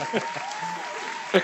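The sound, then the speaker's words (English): Two sharp hand claps, spaced about a second apart, fairly loud, with a faint steady background hiss between them. “Here's a couple of claps.”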